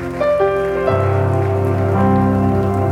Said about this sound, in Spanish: ¿Y cuántos le pueden dar un aplauso al Rey de Reyes, Señor de Señores?